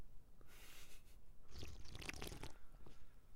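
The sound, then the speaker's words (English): A soft slurping sip of fizzy strawberry lemonade, one sustained pull lasting about a second, framed by quiet liquid hiss and fizz before and after, with no talking. “That sip was immaculate.”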